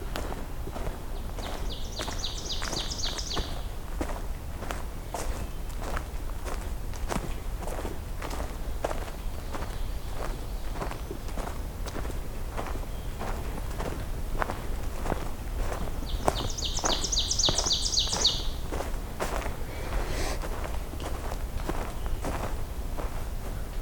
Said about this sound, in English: Another oven bird up ahead. The teacher song. It's actually two of them because there's one behind me now too.